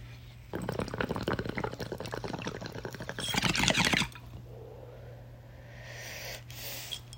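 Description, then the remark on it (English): Steady bubbling of water through a bong for about three and a half seconds, rising to a louder gurgling rush near the end, then a quiet exhale with a faint steady hum underneath. “But let's take this rip.”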